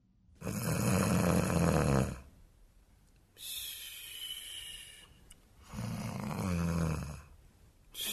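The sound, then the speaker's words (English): Three loud, drawn-out snores from a finger puppet in a steady rhythm, each rasping inhale followed by a quieter breathy exhale, alone with no talking. “The first episode of Top Goon opens on a lone, snoring finger puppet.”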